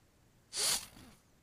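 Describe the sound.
A single sharp, breathy, almost animalistic sniff rushes in loud, then trails off into a long, drawn-out softer tail, with quiet background and no talking.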